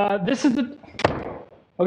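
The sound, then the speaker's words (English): A door gives one sharp, loud thud as it's pulled against and doesn't open, its boom fading quickly; a person talks briefly before and after the knock. “It'd be like, me today, like, okay, here's the door where we need to go in. So I'm going to try to... That was weird.”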